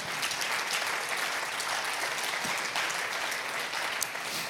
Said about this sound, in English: Would you clap your hands and say amen today?